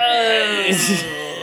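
A single drawn-out Wilhelm scream, a high, strained yell with wavering pitch that breaks into a harsh, breathy peak midway before trailing off, loud and alone.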